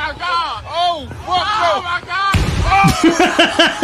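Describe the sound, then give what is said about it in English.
Wavering, voice-like tones rise and fall, then a sudden loud, rumbling blast bursts in, like an explosion slamming a door open, with vocal sounds continuing over the noisy aftermath. “Blows the door right open.”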